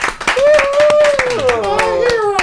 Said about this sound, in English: And ladies, let's give a huge warm round of applause for our hot guy of the week,